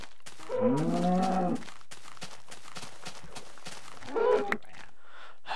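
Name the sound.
cow mooing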